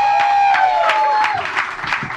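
An audience breaks into a round of applause, many hands clapping in a dense, steady patter for a couple of seconds, with a thin sustained tone running through the first half.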